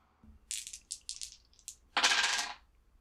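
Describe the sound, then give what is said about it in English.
Dice rolled to act under pressure, coming up eight, clatter and tumble across a hard surface in a run of quick, bright clicks, ending in a louder rattling burst as they settle. No one speaks. “Roll to act under pressure.”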